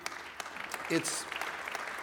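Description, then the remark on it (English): An audience applauds a picture of children from a worship gathering, many hands clapping in a dense, crackling patter with a brief voice rising through the middle of it. “I'm sure you're applauding the cute children in the middle of the picture with that.”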